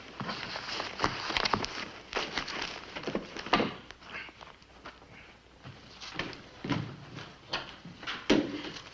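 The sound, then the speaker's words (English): A door being shut, among a run of sharp clicks, knocks and shuffling thumps like footsteps moving about, with no one talking. “Clark, shut the door on your way out.”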